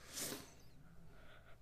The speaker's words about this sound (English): Sorry, I was yawning. I was yawning at the joke.